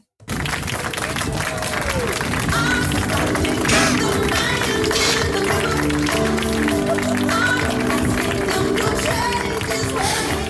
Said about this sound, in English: It was unveiled at a small ceremony attended by club officials and the press. And it's fair to say that the applause here isn't rapturous.